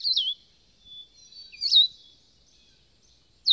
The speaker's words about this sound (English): Presently the birds appeared, a pair of the solitary vireo. They came flitting from point to point, alighting only for a moment at a time, the male silent, but the female uttering this strange, tender note.